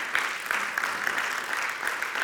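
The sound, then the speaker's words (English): A crowd applauds steadily in honor of Jesus Christ, a dense wash of many hands clapping at once with sharp individual claps popping out, sustained at an even loudness with no voices. “Come on, let's give him a great round of applause this morning.”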